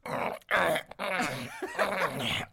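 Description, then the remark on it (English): A man's voice imitates the heavy, panting breathing of a man during sex, a run of breathy huffs and low groaning exhalations in quick succession, with a couple of brief pauses between bursts. “The fighting had apparently been resolved as the sounds of an argument were replaced by the heavy breathing of a man mid-coitus.”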